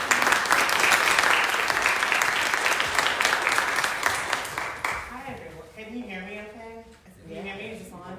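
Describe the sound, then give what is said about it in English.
An audience applauds loudly and steadily for about five seconds to welcome speaker Deesha Dyer, a dense wash of clapping that then fades as a woman's voice begins speaking over the last scattered claps. “And now, without further ado, please give a warm welcome to Deesha Dyer.”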